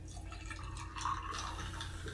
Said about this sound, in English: Oh, you're drinking. You're gonna have to mute this one. I'm gonna be banging my lid in my water bottle and ice.